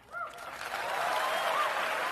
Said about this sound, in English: Now, an easy applause line at Liberty University. For those of you unfamiliar, it's, they say, the largest Christian university in the world. It's got a campus of, what, about 20,000 or so in Lynchburg, Virginia.